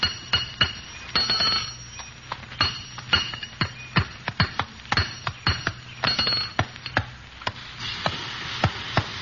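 Hammering on metal in a blacksmith shop: a long run of sharp, ringing clangs in an uneven rhythm, some landing in quick pairs, over a low steady hum with no talking.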